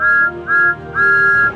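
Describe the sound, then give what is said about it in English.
Thomas the Tank Engine, a little blue steam engine, blows his whistle: three loud toots, two short ones followed by a longer held blast, with a bright, chord-like tone and no voices. “He is the number one engine on Sir Topham Hatt's railway and has a whistle that sounds like this.”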